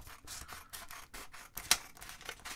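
Scissors snip through paper, cutting snowflakes out of recycled paper, in a quick, steady series of crisp cuts, with one sharper snip near the end. Fairly quiet, with no voices.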